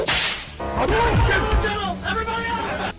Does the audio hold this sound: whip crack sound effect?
yes